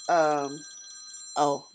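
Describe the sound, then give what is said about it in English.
A phone rings in two short electronic bursts, a longer trill followed after a brief pause by a shorter one, with a faint steady high tone underneath. “Sorry, just ignore the phone.”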